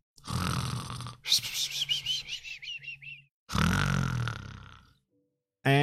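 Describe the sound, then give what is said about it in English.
A voice imitates snoring: a rough, rattling inhale, a wavering whistle on the exhale, then another loud snore before a brief pause and a final snort. “Let's go to sleep, do the whole snoring thing, and continue in the morning.”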